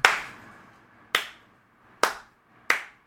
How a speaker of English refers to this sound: Sorry. I tried to get a slow clap going and failed.